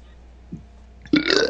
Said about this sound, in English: His first line was a burp. That's just perfect.